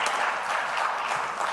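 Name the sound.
audience clapping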